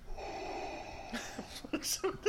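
Loud, heavy breathing, a long raspy snore-like inhale followed by several short, wheezy snorts and gasps, with no talking.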